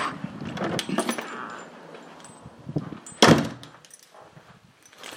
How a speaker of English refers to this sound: just opening the door, going into my house.